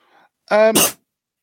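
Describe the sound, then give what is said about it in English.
A single loud cough bursts out after a brief voiced, tonal lead-in, ending in a harsh breathy rush of air; a faint murmur is heard just before it, then silence. “I like the way we caught the beginning of that cough.”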